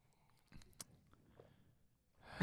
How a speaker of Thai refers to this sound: เสียงกลืนนี่แน่นอนจริง